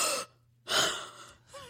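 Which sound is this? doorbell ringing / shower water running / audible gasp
audible gasp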